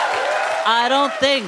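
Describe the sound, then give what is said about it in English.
Live audience applause at the Bell House venue, a dense wash of steady clapping; partway through, a voice begins over it while the clapping continues underneath. “And let's hear it for the wonderful people at the Bell House.”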